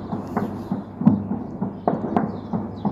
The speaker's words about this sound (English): Gunfire in the distance as people understandably try to keep well away from the violence.